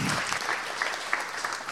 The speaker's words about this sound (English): So let's just give a quick round of applause to all of those people one more time.